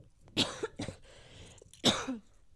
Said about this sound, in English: Sorry, it's always when I record the podcast that I have allergies, my cough.